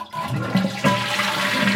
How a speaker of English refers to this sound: That's an old toilet. That is a very old toilet. That's an old, old toilet.